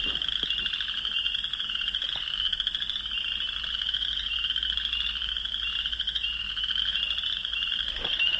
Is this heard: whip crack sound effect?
no